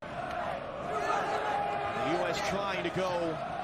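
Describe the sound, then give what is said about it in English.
A large stadium crowd of Mexican fans booing loudly and steadily at the final whistle of a 0-0 draw, a dense roar of many voices with drawn-out jeering tones rising and falling over several seconds. “Those boos from the Mexican crowd.”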